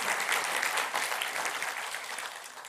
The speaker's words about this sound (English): Let's just give our moms a clap. Let's give all the moms, and spiritual moms, thank you.